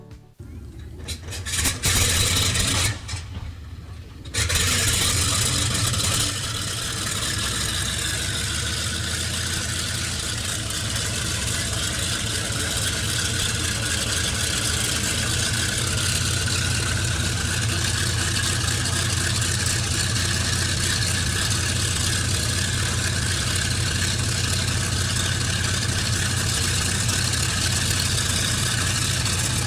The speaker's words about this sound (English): They had four powerful Wright R3350 duplex Cyclone engines, and this is what they sounded like on startup.